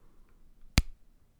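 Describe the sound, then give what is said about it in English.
A single crisp, sharp snap of a Terry's chocolate orange segment being broken against an otherwise quiet background. “see if you can give that a nice snap for our listeners.”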